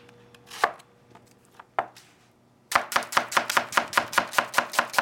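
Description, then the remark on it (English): A knife slices an onion on a cutting board: two separate cuts, a pause, then a quick, steady run of about a dozen crisp, even chops. No one speaks. “You want to go with a dice, you want to go with a thick slice.”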